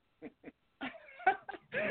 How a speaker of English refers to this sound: He's got a new puppy. Okay. I apologize for this.